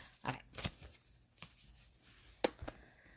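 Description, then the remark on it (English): Tarot cards being shuffled before a card is pulled, a few irregular papery slaps and riffles with quiet pauses between, fairly soft overall, and no one speaking. “Oh, I need to get better at shuffling for real.”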